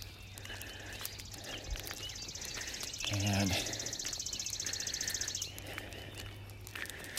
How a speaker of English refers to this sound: So, the things you hear when you get up at the break of day. Yep. Out with Reagan for her walk. Of course, you hear all the bird song.